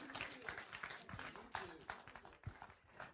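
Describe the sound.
A crowd applauds steadily for performers after a serenade, many overlapping claps forming a dense, loud wash of noise, with some voices mixed in throughout.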